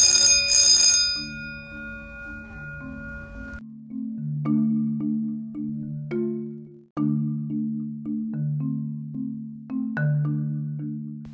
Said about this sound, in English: Okay, so let me explain what that bell is that you just heard. That's the warning bell. It's the same exact sound at every studio, and basically they ring that bell at two points.